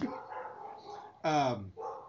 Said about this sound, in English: Dog's barking.